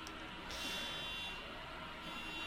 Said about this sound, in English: Oh, car alarm. There's a beat to you too. There's a car outside that parks on the street around here all the time that has a super sensitive alarm.